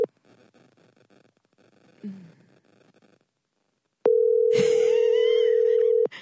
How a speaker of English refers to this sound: Why does it keep ringing and not going to voicemail? Well, he doesn't have a voicemail.